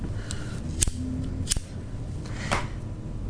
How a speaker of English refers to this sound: That letter got crumpled.